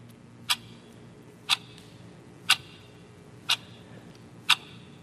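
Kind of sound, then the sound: household object, clock ticking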